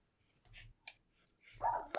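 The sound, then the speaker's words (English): A dog barks in a few short, scattered bursts, the loudest and fullest coming near the end, with no one speaking. “Dog's kicking off.”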